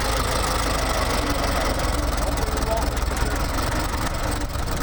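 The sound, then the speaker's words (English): A vintage ambulance engine runs steadily while driving past members of the Yankee Division, a continuous low, rattling rumble with a slight knocking texture that holds at an even loudness throughout, with faint indistinct voices underneath. “Now you're getting ready to drive past the members of the Yankee division.”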